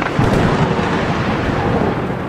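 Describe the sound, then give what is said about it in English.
A loud rumble of thunder after a bright flash of lightning outside fills the whole stretch, a heavy continuous roar with deep low-end weight and no voices over it. “There is, outside, a bright flash of lightning.”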